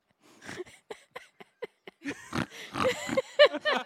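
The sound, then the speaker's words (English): A person mimics a mix of a pig and a possum: a run of short, quick oinking grunts, then a louder burst of squealing snorts and squeals. “I'm trying to combine the pig and the possum.”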